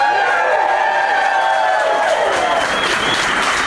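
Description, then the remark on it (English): A crowd at Helium in Philadelphia cheers and applauds loudly and steadily at a live Doug Loves Movies show, with whoops and shouts rising over a dense wash of clapping throughout. “Like, I'm sure there's plenty of people have no idea what's about to happen, but they responded in a fired up way.”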